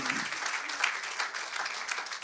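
A church audience breaks into steady applause for a visiting musician after his music, many hands clapping together in a dense, even wash that holds throughout at a moderate level, with a brief low murmur at the start.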